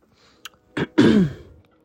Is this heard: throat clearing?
yes